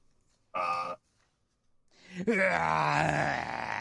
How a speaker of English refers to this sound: You also blind the Mustafarians. Yes. You also hear a yell, just like a primal scream.